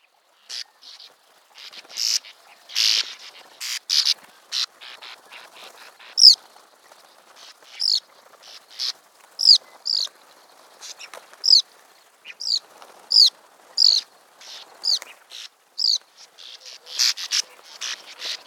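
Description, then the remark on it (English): Bank swallow calls: dry, buzzy chattering notes in quick bursts, high-pitched and fairly steady, repeated throughout with a rhythmic, clicking quality and no voices. “Then we have the Bank Swallows with their automatic calculators.”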